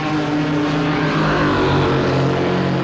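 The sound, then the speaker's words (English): Race cars roar on a track, a loud, continuous engine drone with buzzing harmonics that swells slightly midway as cars pass by. No voices are heard. “These are cars on the track.”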